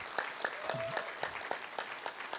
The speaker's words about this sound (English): I just want to increase our remembrance and thankfulness today. So if you could also stand. Why don't we give them a loud clap and appreciation?